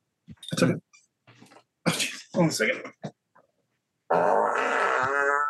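Several short, sputtering fart bursts from a professional farter, followed by a long, loud, buzzing fart that holds a steady tone for over a second.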